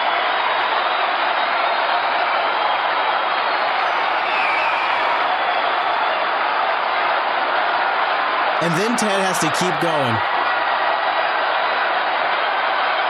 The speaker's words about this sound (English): Listen to that. This is historic booing. This is booing on a scale I've never seen. Endorse Trump. Endorse Trump. That's the New York delegation starting that up.